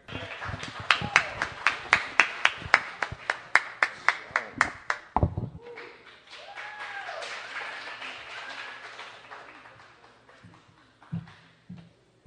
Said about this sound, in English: Y'all clap it up for them one more time. One more time.